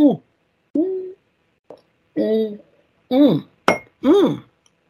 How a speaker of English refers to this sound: That was a good gulp, and I have finished my drink, and that always means the end.